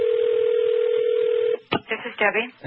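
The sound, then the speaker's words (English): A telephone line hums with a steady, even tone for about a second and a half as a number is dialed, then cuts off and a voice begins talking. “Let's call Debbie and see how that storm's coming.”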